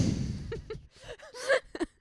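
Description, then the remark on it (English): A run of short, throaty coughs in quick succession, irregular in rhythm, with a louder pair near the end after a low rumbling burst at the start. “If you're gonna call things music groups and mini movies, I gotta cough.”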